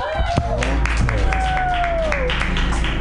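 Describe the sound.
An audience applauds, with steady, dense clapping throughout and a few cheering voices rising and gliding above it, including a long sustained whoop.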